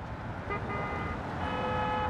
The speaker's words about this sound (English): If you place yourself on any street in Manhattan, there's always this underlying whoosh of traffic, which, if you are sensitive to sound, you'll probably pick up on pretty quickly.